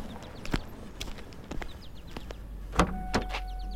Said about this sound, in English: Then the truck pulls up behind you. Back to work.